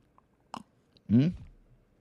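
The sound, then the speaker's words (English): A soft clink of a coffee mug, then one short slurping sip of water from it with a wet, whistly suck that trails off into quiet. “When you get over there, you can find these really nice Sword of the Spirit podcast coffee mugs, of which I have right here, and I'm going to take my traditional sip and slurp.”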